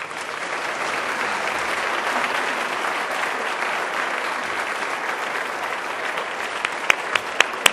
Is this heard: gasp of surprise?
no